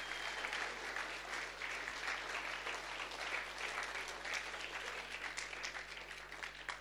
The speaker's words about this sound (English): Give the kids a hand clap tonight.